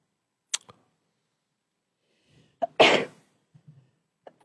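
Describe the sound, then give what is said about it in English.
A single sharp sneeze bursts out after a brief catch of breath, surrounded by quiet with a few faint clicks and rustles and no talking. “Bless you.”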